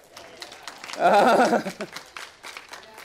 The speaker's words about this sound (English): Come on. Give him a hand clap.